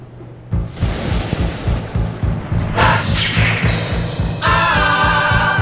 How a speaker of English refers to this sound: Okay, whoa, the lightning and the thunder means it is time for Flash Answers.